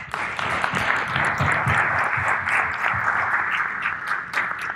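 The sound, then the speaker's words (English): Sustained applause from an audience at the close of an event, a round of applause for the hosts, Art Jamil: a dense wash of many hands clapping at a steady, fairly loud level throughout, with no voices standing out. “Thank you so much for coming, for participating, and another round of applause for our hosts, Art Jamil.”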